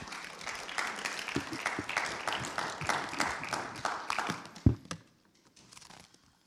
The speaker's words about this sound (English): Morning, church. As I get ready here this morning, why don't we give our mothers another round of applause.